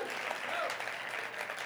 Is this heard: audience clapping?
yes